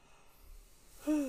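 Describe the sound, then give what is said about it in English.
After about a second of near silence, a loud yawn starts, breathy and voiced, with a sustained tone that drifts slightly downward and is cut off at the end. “And the yawning starts.”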